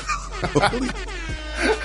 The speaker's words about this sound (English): The air horn just fits perfect there.